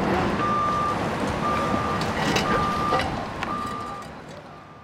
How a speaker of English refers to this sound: Right now I'm looking at a huge bulldozer and forklift lifting someone's car. Putting the car in a dumpster.